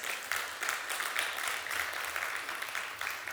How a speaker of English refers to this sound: Yeah, you can give the Lord a good round of applause for that.